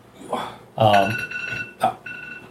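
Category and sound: signal or alarm, timer alarm ringing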